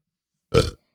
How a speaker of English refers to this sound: Had that burp sound on my new microphone. It smells good. I can tell you that.